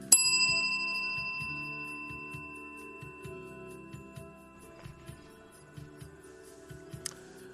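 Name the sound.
bicycle bell ringing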